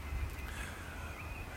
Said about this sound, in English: I'm out here making the coffee during the bird song because you guys tell me you like it